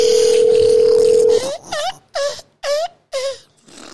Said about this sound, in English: All right, she didn't answer the goddamn phone.